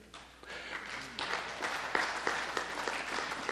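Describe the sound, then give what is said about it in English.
A crowd breaks into applause, starting softly and swelling into steady, dense clapping that holds at a moderate level, with scattered sharper claps standing out. “Save your clapping for a minute because it'll get better, okay?”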